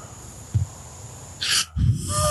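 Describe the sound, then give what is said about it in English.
Heavy breathing with a brief low thump, then a sharp hissing inhale followed by a deep, rough exhale, all without any talking. “The heavy breathing.”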